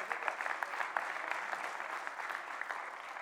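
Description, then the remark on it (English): A church audience claps steadily to give God glory, a dense wash of many hands with sharp crackling transients and no voices above it, holding an even loudness throughout. “When you see Jesus sink a 3-foot putt, then you can clap like that.”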